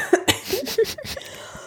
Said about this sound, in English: I'm going to cough.